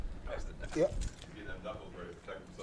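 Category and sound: household object, keys jangling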